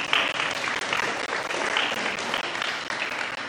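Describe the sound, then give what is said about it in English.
A crowd breaks into sustained applause, many hands clapping in a dense, steady wash of sound that stays loud throughout, with no voices standing out above it. “Yeah, somebody could clap.”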